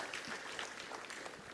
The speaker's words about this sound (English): Yes, give the Lord a round of applause. Amen.